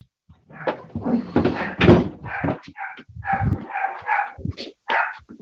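dog barking in background

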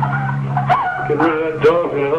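dog barking and whimpering

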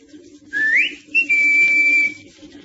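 whistle signal

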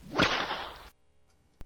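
whip crack

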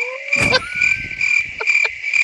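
crickets chirping

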